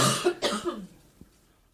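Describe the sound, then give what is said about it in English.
A woman gives two harsh, rapid coughs in quick succession, fairly loud, trailing off into quiet with a faint breath afterward. “Oh, that cough.”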